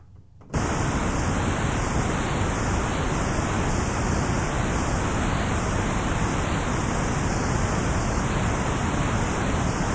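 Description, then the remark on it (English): A steady hiss of synthesizer white noise switches on abruptly after a brief silence and holds at a constant, loud level with a faint slow wavering, no voices present. “This is white noise, so-called because as white light contains all colors, so white noise contains all pitches.”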